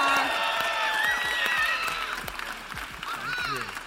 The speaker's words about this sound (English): And we love you guys. Thank so you. Let's give them a round of applause and a cheer. Woo!